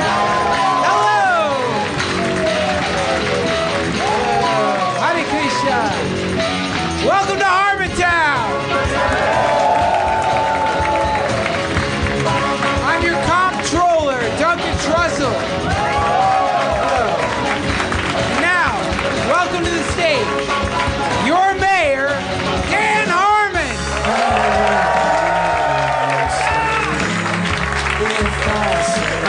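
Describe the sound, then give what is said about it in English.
A live audience cheers and applauds loudly and without pause, with whoops and shouting voices rising over dense clapping that stays at full strength throughout. “Another big crowd.”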